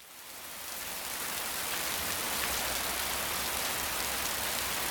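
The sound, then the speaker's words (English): Steady rain falls continuously, a dense hiss of drops spread across the whole clip, fading in briefly at the start and then holding at an even, moderate loudness with no voices. “Now let's just listen to some rain sounds together.”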